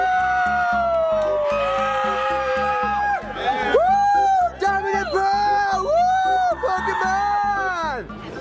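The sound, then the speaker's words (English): A person screams loudly in long, high, wavering cries that rise and fall while running from the front of a line all the way back, over a steady thumping beat and background crowd noise. “Came down here and told me just now that I had to go to the front of the line and run all the way back screaming.”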